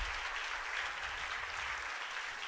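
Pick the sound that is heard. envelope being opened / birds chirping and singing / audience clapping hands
audience clapping hands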